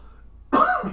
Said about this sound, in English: I will get past this cough.